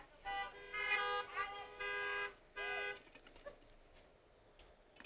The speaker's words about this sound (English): Can I get a honk?